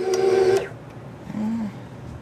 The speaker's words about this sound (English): The hum of the mixer fills the kitchen as it works the batter.